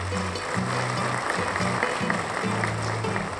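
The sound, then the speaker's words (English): A crowd applause sound effect: a dense wash of clapping at an even volume for the whole few seconds, with a low droning tone humming beneath it. “Isaac put in some crowd applause noise here.”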